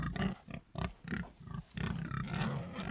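A pig grunts repeatedly, a quick string of loud, snorting grunts that run together toward the end, with no one talking.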